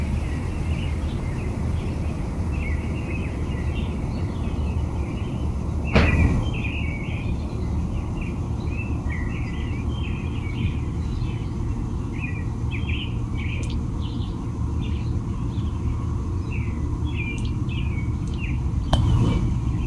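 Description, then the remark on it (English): Several American robins singing repeated clear caroling phrases throughout, over a steady low rumble of outdoor background noise with a couple of brief thumps. “I get the American Robins.”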